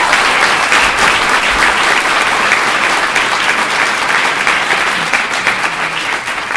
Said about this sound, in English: That's eight people on a 15-person committee who'll be fighting for tough regulations. That's some good math. That's a good start. Let's give them some applause.